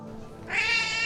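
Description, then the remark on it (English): A cat lets out one long, loud meow, starting after a short quiet moment and stretching to the end with a whiny, drawn-out tone. No one speaks. “Damn cat.”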